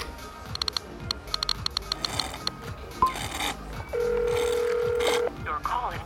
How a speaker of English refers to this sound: I'm trying his cell phone. I think he just got a new one.